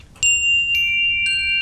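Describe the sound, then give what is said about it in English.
A chime sound effect introducing the Unicorn Gospel segment rings three bright, ringing tones in quick succession, each struck note sustaining and overlapping the next as they fade, with no talking during it. “We got a chime, not just a bell.”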